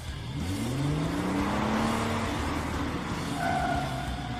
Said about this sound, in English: Car noises, because we're men. This is a testosterone-filled show, because we're men.